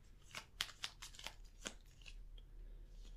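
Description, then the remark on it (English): Quiet shuffling of a deck of basic weakness cards during a card game: a handful of crisp papery snaps and riffles in an uneven rhythm, strongest early on and then tapering into softer rustles, with no voices. “Bear with me as I shuffle the basic weaknesses, and I'll draw from the top until I get one.”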